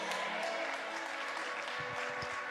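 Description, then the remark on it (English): A crowd applauds continuously, a dense, steady wash of many hands clapping at once, loud and sustained throughout with no clear pauses. “When you clap and when you get excited, you are celebrating life.”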